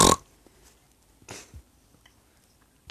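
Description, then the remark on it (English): A sleeping female snores in short, rough snorts: one loud burst at the start, a softer raspy one about a second later, and a faint third at the end, with no talking. “Oh, she's snoring.”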